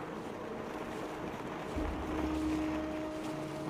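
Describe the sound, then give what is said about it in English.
A gust of wind whips up snow, a steady roaring rush that swells louder midway through and then holds, with a low rumble underneath and no voices. “At that, as if ordered by Captain, a gust of wind rises and snow whips up around us.”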